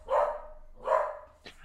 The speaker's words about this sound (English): Well, my dog is going nuts. Everyone's animals are just really into wrestling now. Mm-hmm. My. Someone else say something until he's done barking.